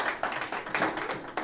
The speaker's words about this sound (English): All right, everybody, let's give a quick round of applause to our speaker,